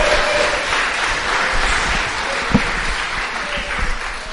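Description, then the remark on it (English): A crowd applauds steadily for people who came up to share, a dense wash of many hands clapping at once, sustained and fairly loud for several seconds with no one speaking over it. “Can you give them a round of applause, please?”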